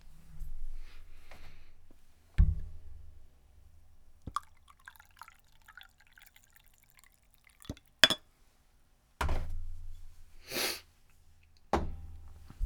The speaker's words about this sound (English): And pardon me for a moment while I pour myself a bit more coffee.